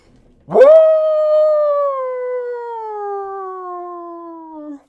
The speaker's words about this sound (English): Before I could ask what she meant, I heard that canine growl again, but much closer than before. A howl ripped through the forest.